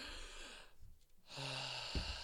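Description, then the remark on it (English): A person takes an exaggerated, deep breath, a rushing airy hiss in two long pulls separated by a short pause, with no talking. “Have you heard of breathing? Breathing for sustenance. Just a big gust of wind, you know.”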